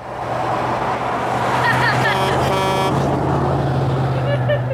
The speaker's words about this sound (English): All right, here comes another one. You know, two trucks. Oh, there we got we got two whole trucks. We got two semi-tractor trailers to drive through that pregnant pause.